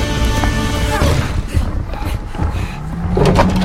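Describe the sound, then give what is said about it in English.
A door is forced open amid loud, continuous mechanical rumbling, with scraping and clattering knocks and a rising whine toward the end. “I really hope you've got that door open!”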